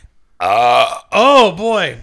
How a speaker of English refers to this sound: So, I like your courtesy of putting the mic closer to your mouth when you belch. Always, always. It's what the people want. It's what the people crave.